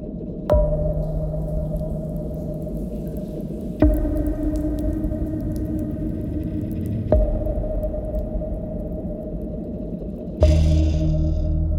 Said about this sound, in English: It's a string. Mm-hmm. I put an effect on it so it's not the full capacity of the string. Then on the peaky part, it sounds like a drop of water.